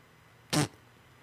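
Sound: fart noise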